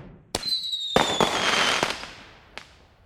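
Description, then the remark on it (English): Fireworks for the July 4th Independence Day celebration in the U.S. burst in a quick series of sharp cracks and booms, with a whistling streak and crackling trails fading out, ending in one last pop. No voices. “In the U.S., July 4th is the day we celebrate uniting as one country, and every year Americans light up the sky with fireworks.”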